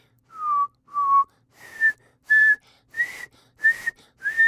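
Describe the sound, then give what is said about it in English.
A person whistles a series of short, clear notes close to the microphone, the first two lower and the later ones higher and breathier, with brief pauses between them. “Okay, so now that the lesson's over, as we all know, this is the part of the podcast where I practice my whistling into the mic.”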